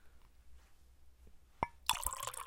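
Chardonnay wine is poured into a glass: a sharp glassy clink, then a bright, splashy stream of liquid that keeps gurgling steadily until the end, with no one talking.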